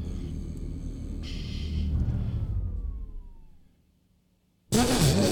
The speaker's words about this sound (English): I'm gonna pull up. That is the engine sound. Pull up. No, it's not. Yes, it is.